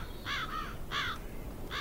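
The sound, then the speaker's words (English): Crows caw in short, harsh bursts, three or four calls spaced irregularly over a low outdoor rumble, with no voices; the crows live in a massive willow tree by an 1840s house. “A murder of crows lives in a massive willow tree nearby.”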